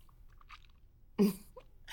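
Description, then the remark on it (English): Wet mouth sounds of a sip of 20-year-old single barrel reserve bourbon being chewed and swished in the mouth, a few soft smacks followed by one louder, juicy squelch and then more quiet slurping, with no talking. “The Kentucky Chew.”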